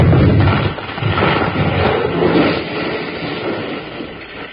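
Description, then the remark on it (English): A heavy wooden beam, set to fall right over a door, crashes down with a loud, booming impact, followed by several seconds of rough, rumbling clatter that slowly eases off. No one speaks. “You sure were smart to figure on setting that big beam to fall right over the door, Colorado.”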